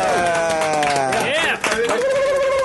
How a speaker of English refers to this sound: Hello and welcome to this week's very special edition of Tell 'em Steve Dave number 200, the Bicentennial. God, this is where you guys are supposed to clap.